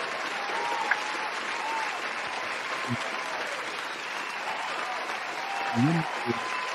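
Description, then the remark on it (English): A crowd applauds steadily and densely for several seconds, the clapping blending into a continuous wash with a couple of brief voices or shouts rising above it; a round of applause for NFL quarterback Brock Purdy. “So round of applause for him.”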